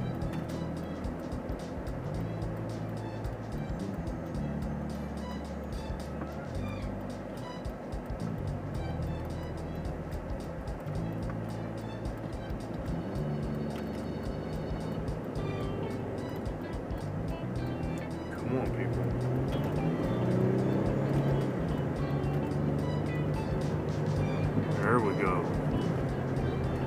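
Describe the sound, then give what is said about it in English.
Steady low rumble of a car moving through highway traffic, a continuous road-and-engine drone heard from inside the vehicle that grows a little louder and busier in the second half. “I survived the traffic. Now just to make it home through the rest of the traffic.”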